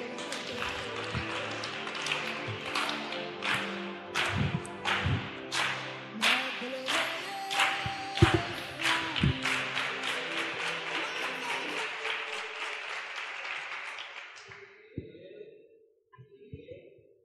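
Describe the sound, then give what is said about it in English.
An audience claps for the Lord after a prayer, together in a dense, sustained burst for about fourteen seconds, with louder rhythmic claps standing out, before the applause dies away and a voice briefly follows. “Give the Lord a big clap,”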